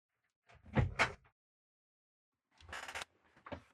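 A door that a cat had opened is shut in two bursts: a scraping, rattling swing with a firm thud, a pause, then a longer sliding rumble ending in a shorter knock, with no talking.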